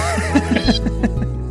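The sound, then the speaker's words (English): A kitten named Joan meows repeatedly, a quick run of about six short, high, bright calls, fairly loud over a steady low hum, with no one talking. “All right, Joan, you're going to have to leave because you're meowing really Joan, loud.”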